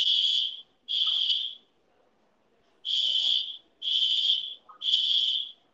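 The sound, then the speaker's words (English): An alarm going off outside at midnight sounds loud, high-pitched electronic beeps, two in a row, a pause of about a second, then three more, each lasting under a second, with no voices. “All I know is that an alarm?”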